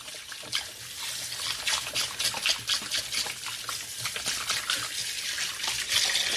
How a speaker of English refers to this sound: So I'm just going to wash my hands.